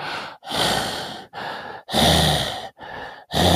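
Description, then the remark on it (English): A voice imitates a congested masseuse's heavy, labored mouth breathing during a massage: six loud, breathy inhales and exhales in a steady rhythm, each separated by a brief pause, with no talking. “And like the entire time she's giving me the massage, she's breathing through her mouth and like really heavy breathing.”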